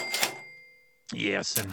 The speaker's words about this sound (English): That huge cash register must take a lot of space up on Jeff's control board there.